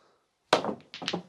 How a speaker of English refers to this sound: He couldn't really do much with that, but ow! He just banged his head and shouted out. I don't know if you heard that.